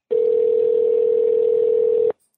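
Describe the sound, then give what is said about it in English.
An outgoing phone call rings out with one steady, sustained electronic tone lasting about two seconds, loud and clean, then cutting off abruptly with no answer and no voices. “Mystery caller is not picking up.”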